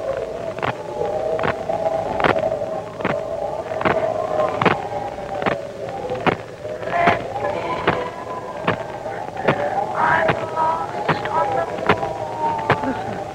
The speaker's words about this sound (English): Good Lord. The window. The catch broke in the wind, sir. Stand back. I'll close it.